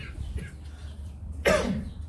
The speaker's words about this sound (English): That wasn't a bad cough, okay? I get caught swallowing sometimes, so don't worry.